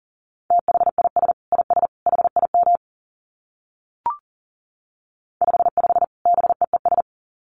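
Fast Morse code at 40 words per minute: a steady mid-pitched beep keyed in rapid dits and dahs, sent in two bursts separated by a silent gap with a single brief click.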